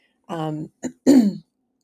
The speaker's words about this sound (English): So you might hear me clear my voice a little bit.